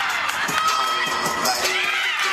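A crowd and teammates at a gymnastics meet cheer wildly for a UC Berkeley senior gymnast who scored a perfect score performing her routine in a mask. A steady, loud roar of many overlapping high-pitched voices shouts and screams throughout, with no single speaker standing out.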